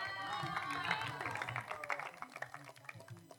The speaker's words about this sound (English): Clap for Jesus.